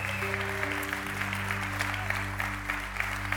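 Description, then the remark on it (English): An audience gives the Lord a shout and a hand clap: dense, continuous applause with scattered voices raised above it, while sustained low instrumental tones hold steady underneath. “Can you give the Lord a shout and a hand clap?”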